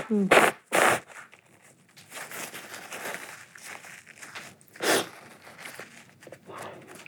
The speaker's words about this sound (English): Excuse me, may I just blow my nose?